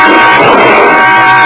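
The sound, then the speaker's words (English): A car collision crash as a driver from the adjacent lane cuts in and hits a car, damaging its fender: a loud, dense burst of crunching, grinding noise that carries on steadily for about a second and a half, with no voices. “at that moment, a driver in the lane alongside decided to cut in ahead of us. He misjudged the distance by a few inches.”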